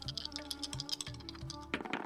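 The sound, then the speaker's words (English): A pupil rolls dice over a game cloth with a grid in rural India; the dice rattle and clatter across a hard surface in a quick burst of small clicks and taps, with a low, steady tonal hum underneath and no voices. “"Come on," mutters the pupil, and he rolls a dice.”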